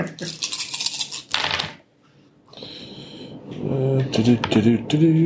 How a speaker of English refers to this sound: Or roll 8d10 or 4d10 times 2. Yeah. More dice. There you go. There's some white wolf rolling right there.